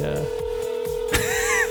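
A steady electronic ringback tone drones through a phone line without a break, with a brief rustle or muffled noise partway through and no one speaking.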